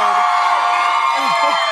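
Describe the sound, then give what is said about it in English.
A crowd at a clothing brand's pop-up event cheers loudly and steadily in welcome, a dense wash of voices with a few whoops rising out of the noise near the end. “That is like the warmest welcome for this crowd.”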